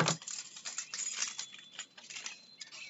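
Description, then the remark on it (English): A ring of house keys jangles as it is handed over, a bright, irregular metallic clinking that rattles and shifts continuously for a few seconds, with thin ringing tones between the jingles and no voices. “Here are the keys to the house.”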